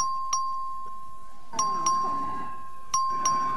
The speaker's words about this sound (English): Members, the question occurs on final passage, HB 2571. This is a record vote. Clerk will please ring the bell.